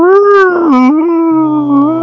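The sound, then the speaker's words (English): A long, moaning whale call with a gliding, wavering pitch, played as a sound effect, loud and sustained for about two seconds with no voices. “does it count that I play whale noises on my friend's pickup powers with Ion?”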